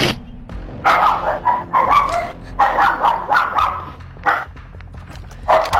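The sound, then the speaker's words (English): A dog barks and yips repeatedly in quick, uneven bursts, loud, heard through a player's microphone in online game voice chat, with a slightly compressed, mic-like quality and a low hum underneath. “Yo, dude, either fucking kill your dog right now or mute your fucking mic.”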